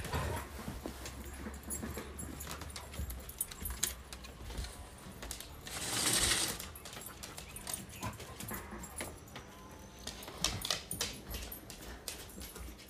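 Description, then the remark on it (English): Dogs barking in short, scattered bursts with one louder outburst midway, mixed with jingling and shuffling sounds, while someone tries to get the dogs into the house. No one speaks. “Whenever dogs sometimes bark, it kind of like makes me angry.”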